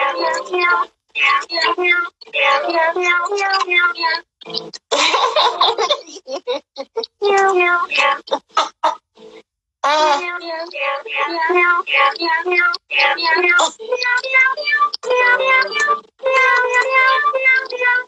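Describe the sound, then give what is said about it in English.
A cat named Meow Kitty meows over and over in quick, pitch-sliding bursts with short gaps, loud, filling the whole stretch with a steady stream of cries. “Okay, anyway, so that is the Meow Kitty making his appearance.”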